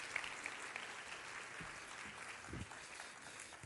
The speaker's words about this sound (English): Can you guys give these folks a round of applause for helping us this morning? Thank y'all so much.